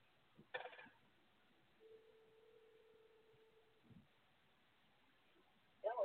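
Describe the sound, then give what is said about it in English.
A phone call over a narrow, tinny line: a brief click, then a single steady ringback tone lasting about two seconds, followed by another click and a short burst of noise at the end. “That's me on your phone, my phone.”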